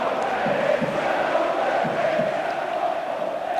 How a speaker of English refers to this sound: Crowd are booing and they're singing the now familiar VAR chant, "It's not football anymore," coming out of the rookery. The whole rookery is standing, singing in unison, and they'll be hoping that this goal will be given.